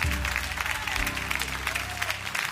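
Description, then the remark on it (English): An audience applauds steadily at a church service, dense overlapping claps, with a low sustained musical hum underneath throughout. “Come on, keep clapping, everybody.”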